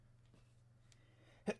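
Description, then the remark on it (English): A single quick, stifled sneeze bursts out near the end, fairly loud, after a stretch of quiet low hum with no talking. “Bless you.”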